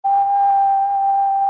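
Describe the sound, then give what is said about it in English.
A low, steady test tone for a headphone audio illusion hums continuously for about a second and a half, clear and fairly loud, with no voices or other sounds around it. “There's also a low, consistent tone.”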